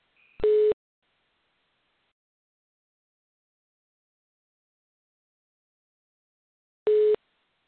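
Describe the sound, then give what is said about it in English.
Two short bursts of a steady telephone busy tone, heard while a conference call is being connected, separated by about six seconds of silence, each a loud, even electronic beep with a faint high chirp just before the first. “And let me put this conference call together.”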